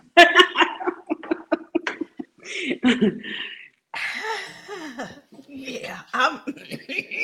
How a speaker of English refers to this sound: Yeah, I had to clear my throat on that.